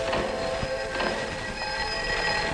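A struck bell rings on with a steady, bright metallic hum, several clear overtones sustaining evenly without fading over a couple of seconds, fairly loud, with no voices.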